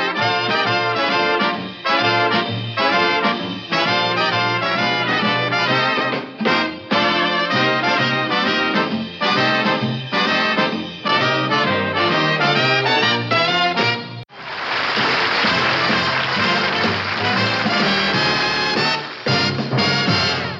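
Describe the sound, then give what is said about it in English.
The instrumental opening and closing theme music of The Dick Van Dyke Show, as it sounded in episodes 15 through 30 of the first season, plays steadily and loudly in brisk, bouncy phrases with no talking, then near the end swells into a fuller, brighter burst of the whole band. “We'll now listen to the opening and closing theme music to The Dick Van Dyke Show as it sounded from episodes 15 through 30 during the first season of The Dick Van Dyke Show.”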